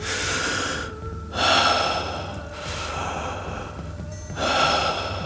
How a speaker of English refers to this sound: He focused on his breath, a deep inhale and a steady exhale.